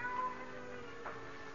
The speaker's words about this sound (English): Suddenly, silence was broken by the faint crying of a cat.